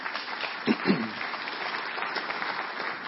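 An audience claps steadily, a dense wash of many hands that stays even and fairly loud for the whole stretch, with a brief vocal cheer early on.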